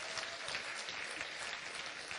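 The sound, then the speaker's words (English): An audience claps their hands to God in dense, sustained applause, many overlapping claps forming a steady bright wash of sound with no voices standing out. “Come on, clap your hand to the God above all gods.”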